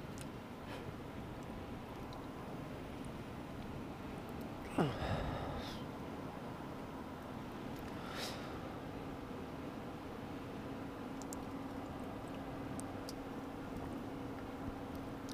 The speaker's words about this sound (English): Holy shit, I was a cough and sneeze and all that at the same time.